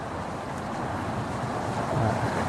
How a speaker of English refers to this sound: Started pouring. It just started pouring. Is that a good sign or a bad sign?